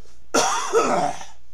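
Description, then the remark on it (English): A single loud cough with a rough, throaty burst that trails off into a brief raspy exhale, heard on its own without any talking. “but gonna cough.”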